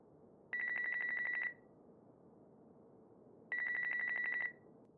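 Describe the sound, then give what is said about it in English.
A cell phone call ringing through the earpiece, dialed from a broken-down car, two long warbling rings about a second each, separated by a two-second pause, over a low steady background hum. “He pulls out his cell phone and dials as he watches the plume of white smoke fill the air.”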